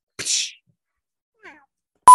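A cat lets out a short, breathy high-pitched cry, then a faint brief chirp a moment later, before a sudden loud electronic beep cuts in at the end.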